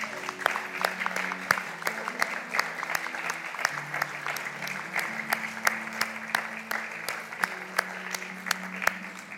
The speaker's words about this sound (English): So I just wanted to applaud the fathers in the house this morning. Ladies, we could do that. And yeah, let's do that.